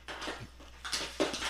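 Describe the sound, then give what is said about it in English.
A dog chews on a plastic water bottle, making a few bursts of crackling, crinkling plastic noise with short pauses between them. Nobody speaks. “Do you hear my dog over there? Listen.”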